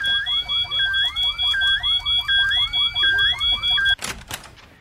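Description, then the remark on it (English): A smoke alarm blares with loud, repeating rising electronic tones in a steady cycle, then cuts off abruptly with a dull thud near the end. “If the smoke alarms go off, they're going to make me wake up the president.”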